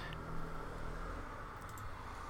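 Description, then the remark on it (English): A car rolls past with a steady low engine rumble and broad road hiss that holds fairly even throughout, with no voices. “So again, sorry, there's a car. Noisy car coming by.”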